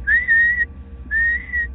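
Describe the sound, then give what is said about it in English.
A person whistles two long, steady, eerie notes, each rising slightly and then holding, separated by a short pause. The whistling is close and clear over a faint low background rumble. “somebody's just like whistling at me.”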